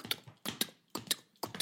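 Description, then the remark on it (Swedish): A horse ridden by a man approaches, its hooves clip-clopping in a steady, unhurried rhythm, each step a sharp hollow knock. There is no talking, just the hoofbeats. “Och då kommer han på hästen då?”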